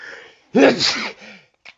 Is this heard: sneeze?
yes